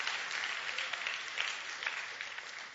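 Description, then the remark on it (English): An audience claps for the Lord together in a dense, steady wash of applause that holds at an even level for the whole stretch, with no voices cutting through. “Come on, give the Lord a hand clap right there.”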